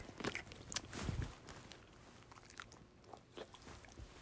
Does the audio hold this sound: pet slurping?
yes